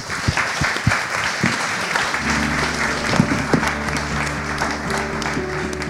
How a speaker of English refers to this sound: Now please a big applause to our three speakers.